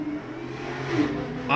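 A car engine idles outside with a steady low drone, then revs sharply upward at the very end, sounding loud.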